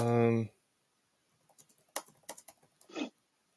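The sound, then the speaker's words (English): A voice trails off, then a quick, irregular run of clicky keystrokes on a computer keyboard follows as a message is typed, moderately loud, with one heavier tap near the end. “I'm just typing a message.”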